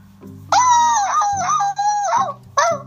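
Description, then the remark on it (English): A voice imitates a small dog, taken for a little cocker spaniel, with a long, high, wavering yelp-like cry lasting about two seconds, then starts a second one, over a low steady hum. “That's a little cocker spaniel or something.”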